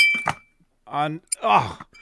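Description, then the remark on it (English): A glass is accidentally struck once with a bright clink that rings on briefly before fading, followed by someone speaking. “Sorry, I hit the glass”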